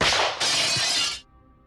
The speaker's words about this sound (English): Each time a bullet found its mark and shattered the glass, wild birds cried in alarm from the canopy that blotted out the sky.